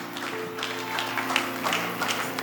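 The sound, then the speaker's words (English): A group of people applauding for a woman, a steady patter of overlapping claps over a low, constant hum, with no one speaking. “Can we clap for her?”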